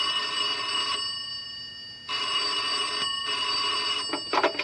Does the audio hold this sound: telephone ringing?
yes